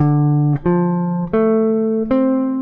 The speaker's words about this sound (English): Okay, so let's go to the D minor seventh chord. So here's the arpeggio.